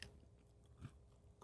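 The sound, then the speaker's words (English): Crunching of a Cheeto puff being bitten down on: two soft, crisp bites, one partway through and one at the very end, with faint mouth noise between them and no talking. “Did you crunch down on the Cheeto puff?”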